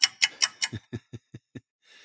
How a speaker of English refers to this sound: I could just imagine if clocks existed back then, this is all you'd hear on the ark. That's it.